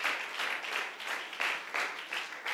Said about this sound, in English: Why don't we give a little round of applause for them and for your pastor, his wife, their family, for all the young people that are out there that put in a whole lot of work.